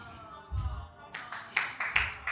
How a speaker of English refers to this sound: Oh, the first clap of the morning.